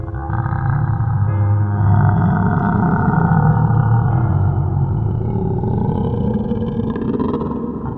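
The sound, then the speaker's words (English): A strange, haunting, echoing call from a tentacled creature the size of a mountain range: a deep, sustained call rumbles and roars for several seconds, low and loud with a growling, grinding texture and a faint higher whine drifting above it. “And you hear this strange, haunting, echoing call from behind you.”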